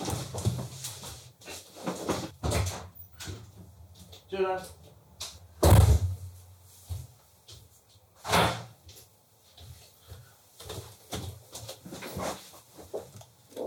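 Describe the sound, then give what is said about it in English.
A door opens and shuts as someone comes to the door, with a series of sharp thuds and rattles, including one heavy bang midway, while muffled voices murmur indistinctly in between. “Sorry, there's someone at my door.”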